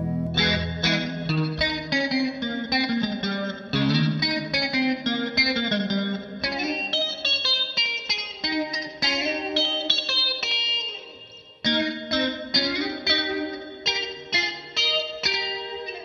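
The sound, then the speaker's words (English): An electric guitar plays a busy, continuous riff, drenched in added reverb with a chorus-like shimmer and slight grit, loud, with a brief dip near the end before the riff resumes. “Can I get more reverb?”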